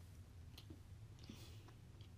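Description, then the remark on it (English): Quiet chewing of food: a few soft, irregular wet crunches and clicks spaced over a couple of seconds, over a steady low hum, with no talking. “Yeah, you're chewing.”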